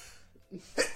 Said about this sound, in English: Bless you.